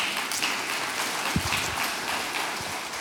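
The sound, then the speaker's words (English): A church audience applauds steadily, many hands clapping at once in a dense, even wash of sound that stays fairly loud for the whole few seconds, with no voices standing out. “Yeah, give that a clap.”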